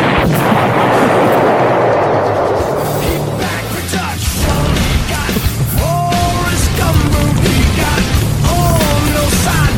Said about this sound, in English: And when he finds the man he's looking for, he'll fling a lit cigarette into gasoline and slowly walk away from an explosion.